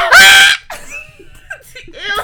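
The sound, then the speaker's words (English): A sudden, piercing scream blasts right up against the microphone for about half a second, loud and distorted, then gives way to quieter snickering and laughter. “sorry for whoever heard me scream at the mic.”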